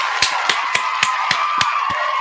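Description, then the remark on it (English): An audience gives a round of applause for Premier Cocktails: a steady wash of clapping noise holds throughout, punctuated by about eight sharp, evenly spaced louder claps in a regular beat. “Let's go ahead and get y'all a round of applause together for Premier Cocktails.”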